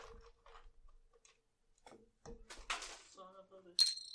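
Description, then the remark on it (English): A handful of dice thrown onto the ground clatter and tumble in a quick burst of sharp clicks, with brief voice-like sounds around them. “He just throws all his dice in the ground.”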